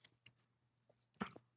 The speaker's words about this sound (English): Wow. I just had my first bites. It tastes delicious. A Whopper imitator. What do you think? Knee-jerk reaction. Sorry about the chewing noises.